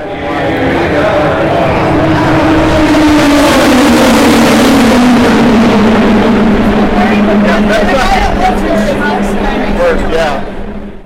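Race cars roar past at a track, engines whining and shifting pitch as they zoom by, loud and sustained with crowd-like noise underneath.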